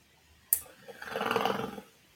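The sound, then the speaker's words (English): After a sharp click, a person growls out a single imitation tiger roar through a toilet paper roll, a rough, hollow rumble that swells and fades over about a second. “Hey, if you do that and do a toilet paper roll, it'll sound like a tiger.”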